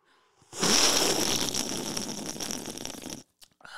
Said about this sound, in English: Fizzy. I have to drink it.